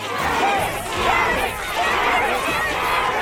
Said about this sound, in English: The crazy bunnies began punching and kicking one another as they fought for the carrot bubbles.